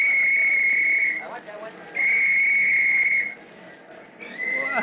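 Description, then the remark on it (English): A shrill whistle blows in long, steady blasts, three in a row with short gaps between, loud, the last one starting just before the end, signalling for the field to be cleared of the crowd. “Soon as I blow my whistle.”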